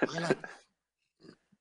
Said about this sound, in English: Burp.